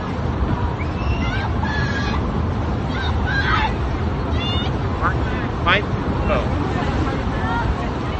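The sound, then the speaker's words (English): A dense, unbroken roar of churning water and crowd hubbub fills the scene, with brief honk-like calls cutting through now and then. “This is like a boat sinking. There's another boat here.”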